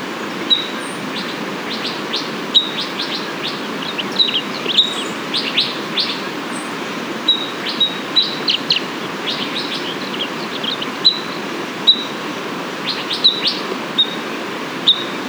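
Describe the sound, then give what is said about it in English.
Sharp, high pinging notes of an Abert's towhee repeat at irregular intervals over a steady hiss of background noise, with short bursts of chirps clustering together. No one speaks. “You are most likely to hear a duet between a bonded pair or a male give his simple song during breeding season.”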